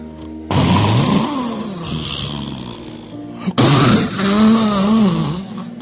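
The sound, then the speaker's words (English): A voice imitates snoring in two long, rasping, drawn-out breaths, loud, with a brief break between them and no speech. “By the way, sisters, you think only men snore. You too snore.”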